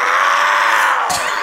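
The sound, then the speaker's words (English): A loud, raspy yell held for about a second, then cut off by a brief sharp burst at the end, with no talking around it. “Is that your little signature yell?”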